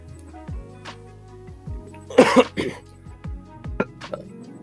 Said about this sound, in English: Hang on a second. Still get a cough every now and then.